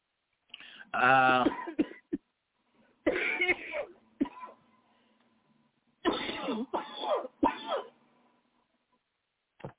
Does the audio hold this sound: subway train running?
no